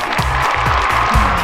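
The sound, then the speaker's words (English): A steady wash of clapping applause from many hands, fairly loud and continuous, with a low droning tone pulsing underneath. “Why are those angels clapping?”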